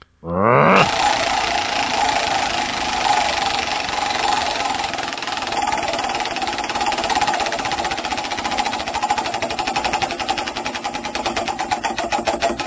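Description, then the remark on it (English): A prize wheel is spun to draw a winner of a bottle opener, with a loud, rapid rattle of clicks from its pointer, a dense ratcheting that runs steadily and begins to space out slightly as it slows near the end. No voices. “Brad, why don't you spin that wheel?”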